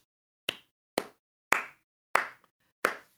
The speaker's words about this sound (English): At the end of your show, Dr. Toikian sort of claps.